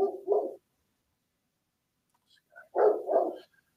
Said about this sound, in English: Dogs barked at squirrels.